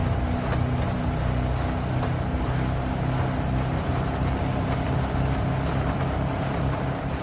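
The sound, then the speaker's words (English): A boat engine drones steadily, a low throbbing hum with water rushing and splashing around the hull, constant and loud for the whole stretch with no voices. It is the boat Ada and Leon take to make their way to Ashley. “Eventually, when both Ada and Leon get together to make their way to Ashley on the boat, Leon asks something similar to what Lewis did.”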